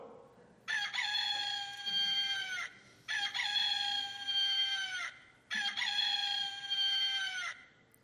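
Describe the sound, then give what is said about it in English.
A rooster crows three times in succession, each call loud and long, with short pauses in between. No one speaks and the background stays quiet. “Then Peter remembered the words Jesus had spoken to him, saying, "Before the rooster crows, you will deny me 3 times."”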